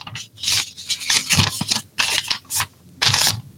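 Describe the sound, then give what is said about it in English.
Crisp rustling and crinkling of a sheet of paper being handled and folded, in several irregular bursts with brief pauses between them, no voices present. “So you probably heard this, the piece of paper, right?”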